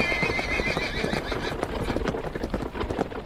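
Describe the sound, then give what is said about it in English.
Rapid, heavy hoofbeats of horses galloping after a heavy wagon, not more than a mile behind it, pound in a steady rhythm while the horses neigh and whinny loudly over the din, with no voices present. “Now the horses are not more than a mile behind.”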